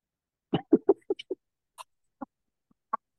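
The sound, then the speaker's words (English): A quick run of five or six short, throaty sniffs and snorts through the nose, followed by a few sparse, fainter sniffs with gaps of silence between them. “Yeah, I mean, you do that thing, and you that inhale, clear your nose, but instead of blowing out your second in, but you know, you got a little bit of that sniffy thing, and then you swallow it.”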